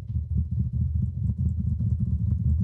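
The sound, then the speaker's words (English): Rapid, unbroken keyboard typing used as a drum roll before declaring a winner, rattling along in a dense low-pitched clatter of fast strokes that stays steady and fairly loud for the whole stretch, with no one talking. “I don't know what it sounded like, because it just sounds like typing to me.”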